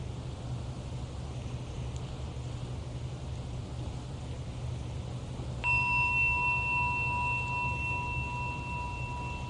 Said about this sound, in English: So this is a gong, and it's one of the most common ways of calling our attention back.